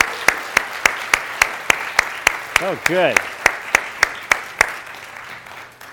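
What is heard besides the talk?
audience applause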